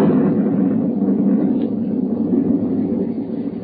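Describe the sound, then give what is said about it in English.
A loud thunder crash after lightning rolls on as a deep, sustained rumble, heavy, holding steady for several seconds with no voices over it. “And then the lightning came again.”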